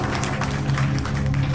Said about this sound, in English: Meanwhile, back at the university fundraiser, the crowd applauds as Francine approaches the microphone.